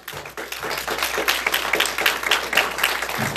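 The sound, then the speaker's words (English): A church audience claps together as praise to God in a dense, steady burst of applause, many hands overlapping into a bright, sustained roar that holds fairly even for several seconds. “Now give God a good hand clap of praise.”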